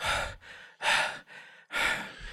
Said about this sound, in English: When I see him coming, I am going to just drop the body like a sack of taters because I'm wore out. And I am doubled over, hands on knees, panting.